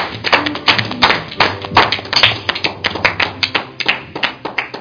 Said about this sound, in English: Can you give the Lord a good hand clap and pray?